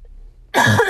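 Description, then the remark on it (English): A single harsh cough bursts out loudly after a moment of near silence, rough and throaty, with no talking around it. “My apologies. I am coughing.”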